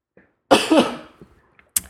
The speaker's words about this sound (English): Coughing.